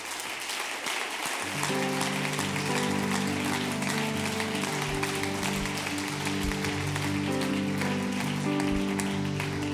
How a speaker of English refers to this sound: Could you give them a hand clap?